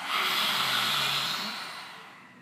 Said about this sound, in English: This time we're going to inhale through the nose and like a lion's roar, stick out your tongue. Exhale.